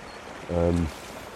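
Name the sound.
flowing river water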